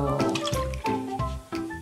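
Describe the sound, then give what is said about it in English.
Gurgling, bubbling water churns up in repeated surges, with sloshing pulses roughly every third of a second, moderately loud, like liquid being sucked upward through a tube, as air creates a suction that draws the water up. “You know what that air is doing? It's creating a suction.”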